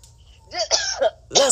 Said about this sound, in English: Now, sorry, you guys, it's not Corona. I just want you to know I'm coughing because I'm a smoker. I had a J before I got on here.